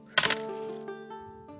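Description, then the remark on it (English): Dice are rolled to see if the character Strax dies, clattering in a quick burst of sharp clicks, followed by a few lighter taps as they settle, over a steady tonal hum in the background. “So rolling the dice now to see if Strax dies.”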